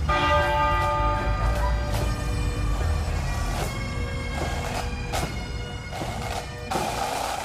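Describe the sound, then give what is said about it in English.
The large, deep tenor bell of an ancient abbey tolls steadily, 96 tolls, one for each year of Queen Elizabeth II's life. Each strike lands about once a second and blooms into a long, humming resonance that overlaps the next, with no voices present. “It began with 96 tolls of the ancient abbey's tenor bell.”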